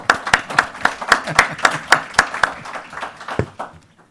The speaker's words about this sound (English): And without any further ado, let's give an applause or welcome to the panel.